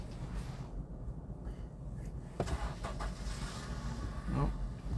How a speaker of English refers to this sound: Car next to us is leaving.